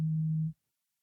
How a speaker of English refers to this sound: Is there a phone beeping somewhere?